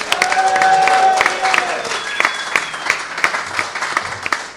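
A crowd claps steadily for a few seconds, a dense patter of many hands. Near the start a high whistle or cheer rises over it, and the applause thins slightly toward the end.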